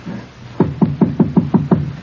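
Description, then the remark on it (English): Seven sharp knocks rap on the door of a flat in a steady, quick rhythm, fairly loud, with a faint low hum underneath and no voices. “Then, knock.”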